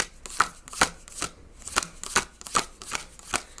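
Tarot cards being shuffled and riffled through a deck, a quick run of crisp papery flicks and snaps in an irregular rhythm, fairly quiet, with no voices.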